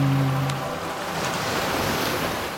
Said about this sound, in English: Eventually the wave breaks, and the conductor sits on the sand, and nothing happens for long enough that the villagers mostly go back to their days.